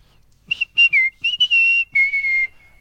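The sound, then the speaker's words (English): A person whistles a short West Ham football terrace chant that used to go around the ground: a quick run of clear, piercing notes in choppy phrases, ending on a longer held note. It is loud, with no talking. “As a kid, there used to be a whistle, and it was this.”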